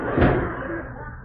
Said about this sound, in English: Wait till I close this door.